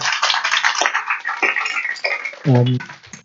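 An audience claps for a speaker who has just finished talking, in a steady, dense round of applause that fills the whole stretch, with a short voiced cheer rising out of it near the end.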